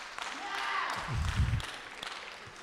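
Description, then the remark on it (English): A handful of scattered handclaps from an audience start up and quickly fizzle out, sounding over a low murmur of crowd noise and a brief rumbling thud. “You know, it's funny, a clap starts, then people think, oh, I better stop.”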